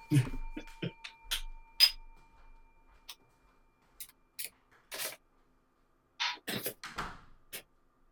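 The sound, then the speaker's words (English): A door being closed: a scatter of sharp latch clicks and soft knocks over several seconds, with faint handling noise between them and otherwise quiet. “Closing the door.”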